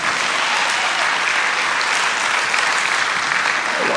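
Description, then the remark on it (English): A crowd claps steadily for several seconds, a dense, even wash of applause at constant loudness with no voices breaking through. “a round of applause”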